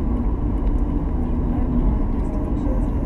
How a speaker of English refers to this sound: Ooh, that car scared me. Dude, that's a woman.